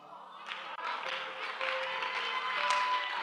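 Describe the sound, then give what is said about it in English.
A crowd claps steadily, the dense applause swelling in after a brief pause and staying loud throughout, with a few voices and a faint sustained tone mixed underneath. “Now listen, don't be clapping away the things, because some of you clap like this.”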